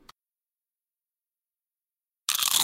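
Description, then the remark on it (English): A loud, crisp crunch of a nacho chip topped with cheese, sour cream and beans bursts after a faint click and near silence, its crackly texture continuing to the end with no voices. “It's the crisp crunch of that first nacho chip.”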